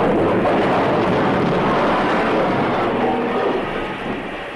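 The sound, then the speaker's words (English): A loud, sustained roar of crashing and rumbling as an explosion topples an entire bridge and a train plunges into the valley below, with dense clattering debris that fades slightly toward the end. No voices. “Suddenly, the tremendous blast of an explosion. The entire bridge topples and falls, plunging the train to total destruction in the valley below.”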